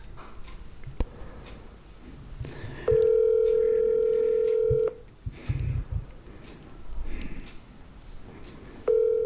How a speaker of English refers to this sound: I'm going to double call him so he knows how important this is.